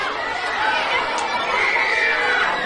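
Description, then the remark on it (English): A crowd of about 300 grade school children chatters excitedly all at once while being warmed up for a spider quiz, a dense, steady wash of high-pitched overlapping voices, with no single voice standing out. “Also, I mentioned that Binford had just spoken to 300 grade school kids when we talked. Just to give you an idea of what that was like, here's the AAAS's … warming up the crowd with a spider quiz.”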